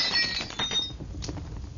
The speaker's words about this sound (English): I grabbed the lamp and smashed it onto the torn paper and scattered straw.